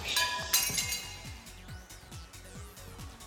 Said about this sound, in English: Glass shattering sound effect. What's that? The glass shattering effect. Yeah, that probably would have been equally as appropriate.